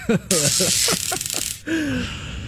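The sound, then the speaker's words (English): A loud, steady sizzle sound effect bursts in and runs for over a second beneath a speaking voice, then cuts off abruptly as the talking continues alone. “I'm giving that the sizzle.”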